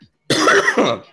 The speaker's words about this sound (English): Excuse me once again, because all I've been doing is coughing on this podcast for the last 3 weeks. I'm almost done with it. I'm almost finished with this sickness. It's like it's still there every once in a while. So excuse me for coughing